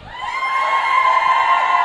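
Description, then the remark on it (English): A crowd cheers loudly and continuously, a sustained high-pitched roar of many voices whooping and shouting together, steady throughout the short moment. “Let's do a round of applause.”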